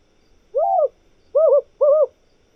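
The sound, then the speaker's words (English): An owl hoots three times, one longer call followed after a pause by two quicker ones, clear against an otherwise quiet background. “Owls tend to be resident birds in all of these habitats across the world.”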